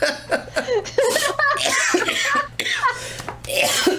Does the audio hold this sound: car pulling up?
no